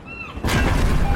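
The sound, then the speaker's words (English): A sudden, loud explosion on a cruise ship bursts in after a brief quiet moment with faint whistling tones, then continues as a heavy, sustained roaring rumble. No one speaks. “I'm on a cruise ship. There was an explosion.”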